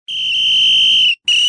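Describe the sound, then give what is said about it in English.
A shrill, piercing brass whistle gives one long, steady blast, then a short gap and a second sharp blast. It is loud and heard alone with no talking. “He pulled up his Bermuda shorts over a rounded sports shirt, adjusted his glasses, and blew a brass whistle.”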